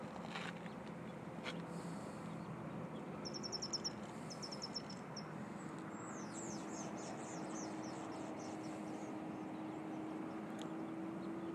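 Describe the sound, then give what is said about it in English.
A steady, low drone of an airplane that is about to make a drop passes overhead outdoors, filling the background while a few birds chirp and trill faintly on top. “You think that airplane's going to drop some sand?”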